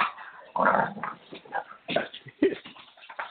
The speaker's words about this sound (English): I'm being attacked by dogs.